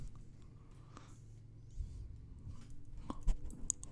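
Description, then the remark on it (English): A dog chewing and biting, soft irregular gnawing with scattered wet clicks and a few sharper snaps near the end, fairly quiet and without any talking. “Trying to bite you?”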